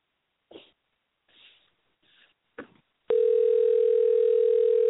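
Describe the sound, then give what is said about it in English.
A few soft, breathy rustles and clicks, then a loud, steady ringing tone of an outgoing telephone call sounds without a break until the end, with no talking. “It's ringing.”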